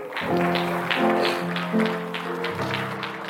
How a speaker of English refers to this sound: Give God a hand clap.